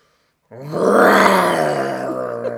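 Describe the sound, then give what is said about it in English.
A person voices a long, low, rumbling growl in imitation of a bear, starting abruptly after a brief silence and sustained loudly for about two seconds, with no words. “Kids, this is my best growl. I'm a lion, so I roar. But I'm going to try.”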